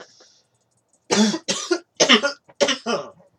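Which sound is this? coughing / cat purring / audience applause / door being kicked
coughing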